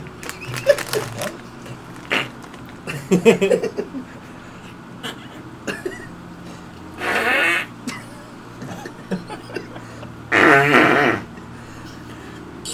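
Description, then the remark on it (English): A series of sputtering, buzzy fart sounds, mostly blown with the mouth, come in several bursts of varying length with pauses between, including two longer, louder raspberries near the middle and end. “Now the real secret is that one of these is actually a real fart.”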